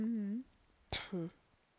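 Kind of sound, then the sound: human body sound, throat clearing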